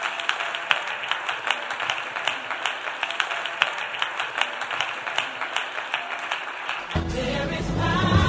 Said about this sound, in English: Clap for Jesus here.